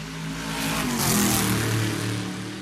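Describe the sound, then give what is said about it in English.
Several vintage racing cars, including a Ford Galaxy, Lotus Cortinas and Alfa Romeo GT Juniors, roar past, their engines revving hard with low, rumbling harmonics that swell to a loud peak and shift in pitch as they accelerate by, with no talking. “That's a Ford Galaxy. That's a Lotus Cortina. That's a GT Junior Alfa Romeo.”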